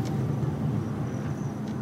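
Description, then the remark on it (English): A black car with no headlights on drives past a stopped police car at an intersection at night, with a steady, low engine rumble that stays fairly even in loudness throughout, with no voices. “The car passes us.”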